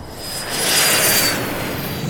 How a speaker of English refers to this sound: She ran for her life, barely registering the F-22 Raptor that was now in final approach and firing its last air-to-surface missile that would incinerate what remained of Irongate.